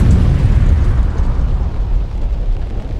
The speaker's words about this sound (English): What are the chances your car just blew up outside? Not likely. It doesn't have an engine. This 2002 Chevy Impala just exploded. Hey, someone call 911. This 2002 Chevy Impala just exploded.